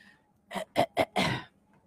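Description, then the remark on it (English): A quick series of four throat-clearing coughs, three short sharp bursts followed by a longer, rougher one, with no speech. “cough lane.”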